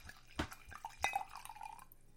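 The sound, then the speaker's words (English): Two sharp glassy clinks, then wine, a black Pinot Noir, pours briefly into a glass, its gurgling tone rising as it fills. Fairly quiet, with no talking. “I'm going to just pour some wine. Here's some nice sounds for you.”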